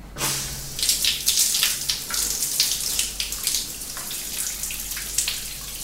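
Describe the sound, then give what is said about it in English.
Shower water runs steadily, a continuous hissing spray with small splashing fluctuations and no voices. “So now I've just got to have a shower.”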